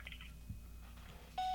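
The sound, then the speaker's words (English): A steady electronic tone sounds near the end of a phone call as a voicemail greeting beep, clear, following a brief stretch of low background hum and faint shuffling. “It's going to voicemail?”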